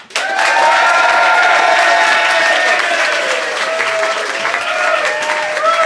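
theatre audience applauding

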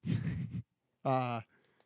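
heavy breathing into microphone

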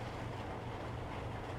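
rain falling outside

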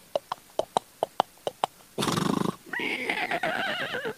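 horse neighing

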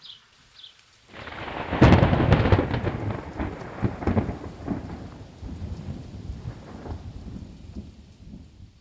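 thunderstorm with rolling thunder

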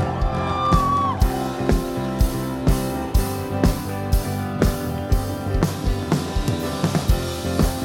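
audience applause and cheering

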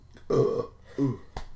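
burp

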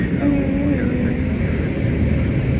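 airplane cabin engine rumble

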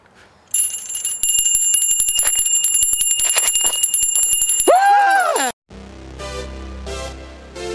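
bell ringing

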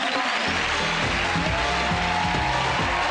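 audience applause

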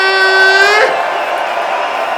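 crowd cheering

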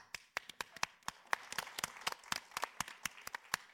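audience clapping

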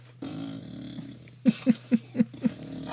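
dog growling

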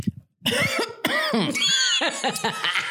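choking cough

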